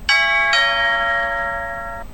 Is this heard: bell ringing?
yes